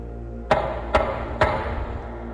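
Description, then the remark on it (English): Three sharp, evenly spaced knocks on the front door of a house, each a crisp thud that rings briefly, over a faint steady low hum. No voices. “A third knock sounded through the house.”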